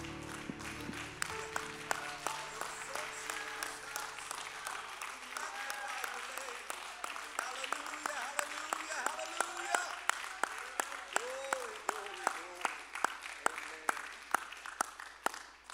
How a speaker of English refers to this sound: Would you clap your hands mightily to the Lord?